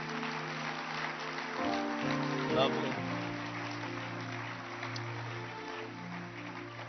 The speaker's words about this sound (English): Those at the back, they're fine, you're not clapping. Keep clapping. Those here at the back, you're not clapping. Keep clapping.